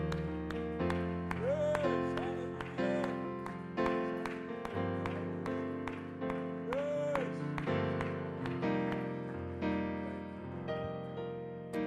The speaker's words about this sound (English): the Bible says, clap your hands, all ye people, and to shout unto God with the voice of triumph. Would you do that right now? Would you clap your hands and would you shout unto God with the voice of triumph?